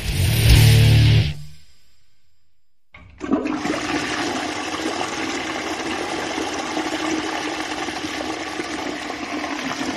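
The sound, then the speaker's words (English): A toilet flushes with a loud rushing roar that fades, then after a brief near-silent pause the tank refills with a steady hissing trickle of water. No one speaks. “That, dear listeners, is the sound of 2021 being flushed down the crapper.”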